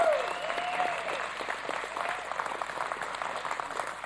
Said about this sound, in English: I want y'all to give them all a hand back there.